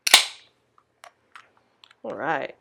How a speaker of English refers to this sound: Would you like to crack the beer? Yes. All right. What are you cracking? I'm cracking BPLB. A hazy IPA by Crowns and Hops.